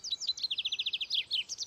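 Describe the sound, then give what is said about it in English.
Songbirds including cardinals, robins, bluebirds and blue jays sing outdoors in the morning along a trail: a fast, even trill of high chirping notes runs into a burst of varied, sharper calls, clear, with no voices. “are full of cardinals, robins, bluebirds, and blue jays, and they all seem to be kicking out the jams this morning as we make our way up the trail.”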